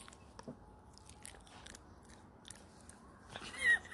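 A dog chews and crunches dog treats on Halloween, with irregular sharp crunching bites and wet mastication sounds over a few seconds, ending in a louder crunch.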